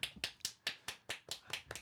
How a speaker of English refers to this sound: Thank you for your warm applause.